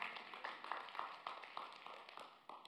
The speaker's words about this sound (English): Nice golf clap.